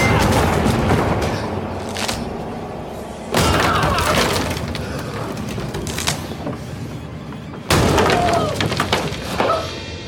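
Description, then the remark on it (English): Three loud, heavy smashing blows land a few seconds apart, each a crashing impact followed by a long, noisy ringing wash, as an axe hacks a piano to pieces. “And, I think immediately following, he sees the piano covered in blood, and he like takes an axe to it and smashes it to bits.”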